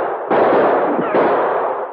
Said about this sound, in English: The shots were coming from a screen of trees which fringed the edge of the cliff. The Mounties fired back at the flashes.